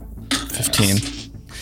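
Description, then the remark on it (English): Dice rolled in a tabletop role-playing game clatter and tumble across a hard surface for about a second, a bright rattling burst of clicks that quickly settles into quiet; the roll comes up 15. “Let this dice roll high.”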